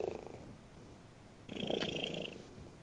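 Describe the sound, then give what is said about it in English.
A cat sitting on a person's lap purrs right up against the microphone, a low rumbling vibration that swells louder and fuller halfway through, with a faint high whine above it and no talking. “That's either a giant cat, or she's really close to the microphone.”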